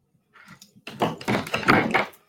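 A chair shifts and creaks: a soft rustle, then a run of scraping, knocking bumps lasting about two seconds, moderately loud, with no one speaking.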